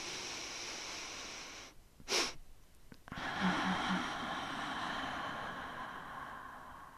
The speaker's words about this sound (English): But it basically looks like this. You take a normal breath in, force a bit more air in at the top, and exhale out the mouth like this.